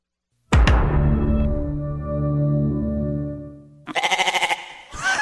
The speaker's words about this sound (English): he did hear it and he described it as very, very goaty. Very goaty. Very goaty. That's funny. He says it was something like the current ta-dum and then it just kind of ended with a goat noise. So here's what I'm imagining it might have sounded like.